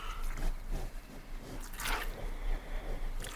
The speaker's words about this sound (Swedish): Vi lyssnar på en scen där Cookie mjölkar kon för första gången. Hör vad artig han är.